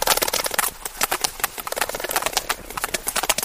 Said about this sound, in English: What we're hearing is a large number of sperm whales clicking.